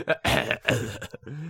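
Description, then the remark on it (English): Two harsh, forceful coughs burst out in quick succession, followed by a short voiced grunt. “I'm going to cough on you.”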